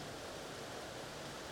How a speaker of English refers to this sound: is that rain? That's a lot of rain.